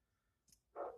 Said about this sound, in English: What the hell is he barking at?